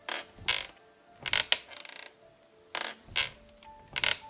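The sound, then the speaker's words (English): A wooden rocking chair creaks over and over in a steady back-and-forth rhythm, each pass giving a pair of scratchy, strained groans with faint squeaky overtones. No one speaks. “It sounded like it was right above me. What was it? I asked myself. The answer came to me in a flash. It was a rocking chair.”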